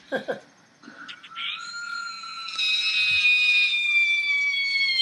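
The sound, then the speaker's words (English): A loud, high-pitched scream rises after a few short vocal bursts and holds steadily for several seconds, growing louder and shrill toward the end. “Listen to that scream.”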